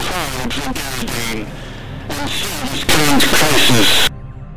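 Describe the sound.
A voice giving a planet-wide speech breaks up under harsh, crackling bursts of deliberate jamming static, with the noise surging loudest in a final burst before the signal abruptly cuts out.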